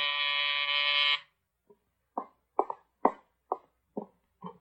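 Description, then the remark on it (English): A door buzzer at Mike Waring's door gives one loud, harsh, steady buzz lasting just over a second, then stops, followed by a string of short, irregular thumps. “Now, Peter Alexo, the client whom Mike Waring had rejected, is once again at Waring's door.”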